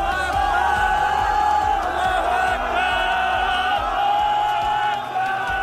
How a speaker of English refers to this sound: When they pull people out alive, there are cheers after the quiet of just listening for people for hours.